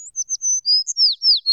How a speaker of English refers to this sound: Little Bird tweeted and laughed.